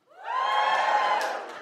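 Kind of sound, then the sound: crowd, audience cheering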